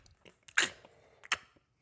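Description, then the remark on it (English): Wet crunching of someone chewing a bitten apple in a very animated way: two loud crisp crunches about a second apart, with smaller smacking clicks between them, and no talking. “Then he bites his Apple. And he's chewing it like very animated, right?”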